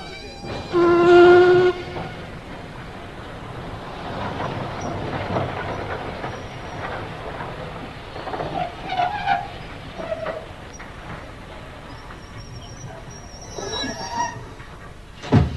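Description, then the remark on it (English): A train rumbles steadily along the rails, a continuous clattering roar with a brief high whine near the start and scattered metallic rattles, without any voices. “I thought you would be, seeing as you're the only one to get off the train.”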